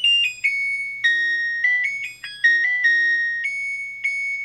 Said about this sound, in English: It's an LG washing machine. It's the tune that it plays when it's finished its cycle.